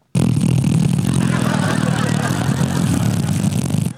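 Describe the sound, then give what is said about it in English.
A voice imitates a button-operated movie theater seat rising during a film: a loud, steady buzzing drone with a low rumbling hum, held evenly for about four seconds like a small motor whirring. “It was one of those ones where you have a button that makes your seat go up and down. And when the seats are coming up, they go.”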